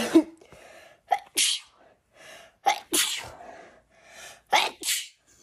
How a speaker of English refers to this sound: Oh no, I'm gonna sneeze. Hold on. Oh no.